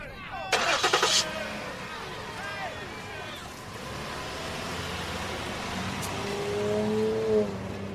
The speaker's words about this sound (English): Good, then start the car. Let's get out of here.